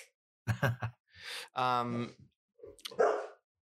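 A dog barks in a few short, sharp bursts, then gives a longer, drawn-out whining bark and one more loud bark after a brief pause.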